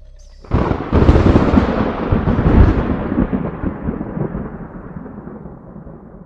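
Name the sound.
thunderstorm with rolling thunder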